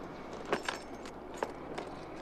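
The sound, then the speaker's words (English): A few brief metallic jingles of car keys, fairly quiet, clinking in small irregular bursts as they are passed from hand to hand, with a faint low hum in the background. “Please, and your car keys.”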